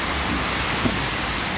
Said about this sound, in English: It's pouring rain outside here, Tadhg, as we talk.